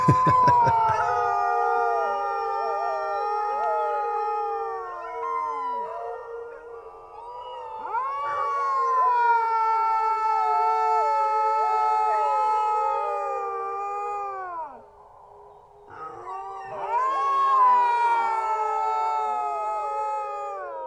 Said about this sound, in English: But basically what happens is you get this, like one of them will get set off, and they'll kind of daisy chain through the whole little fjord. And by the end, you get this 250 wolf mega pack that's howling.